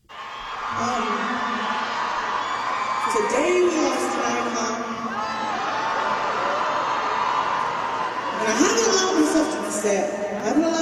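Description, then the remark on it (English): A large concert crowd roars in a steady, dense wash of cheering and voices, singing along to a tribute song, with a female performer's amplified voice rising over the din and louder swells of crowd noise near the end. “She's a little hard to hear because the crowd is so much deeper.”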